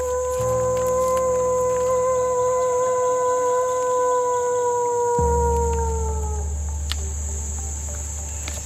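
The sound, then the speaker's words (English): People at the Endangered Wolf Center in Eureka, Missouri, imitate wolves to get the actual wolves to join in: long sustained howls sliding slowly downward and overlapping, outdoors over a steady chorus of chirping crickets and a low background rumble. “Honestly, they sounded super wolf-like. They were trying to get the actual wolves to join in.”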